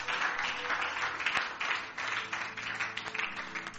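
An audience claps together in a dense, steady burst of applause, many hands overlapping into a continuous crackling wash that holds at an even, moderate loudness throughout.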